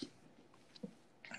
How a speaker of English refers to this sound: Bless you. Thank you. I'm not trying to sneeze in the mic. Let me stop. It's allergies, bro.